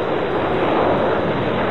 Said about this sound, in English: The crash of waves.